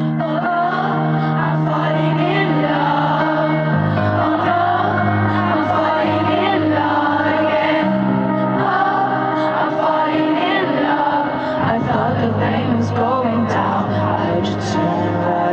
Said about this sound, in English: You know what I noticed? Even in Argentina, the entire crowd is singing along with her, too.